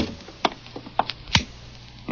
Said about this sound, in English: I'll try the door. Don't knock, it may be open. Okay. Mm. Well, close the door.